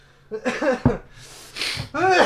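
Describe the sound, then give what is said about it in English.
A single sharp, breathy sneeze bursts out midway, set between bits of pitched, voiced vocalizing before and after it. “Bless you.”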